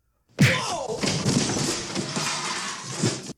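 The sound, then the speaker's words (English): A single loud punch to the face lands with a heavy thud, followed by a few seconds of dense scuffling noise and a smaller knock near the end. “That is when she punches...”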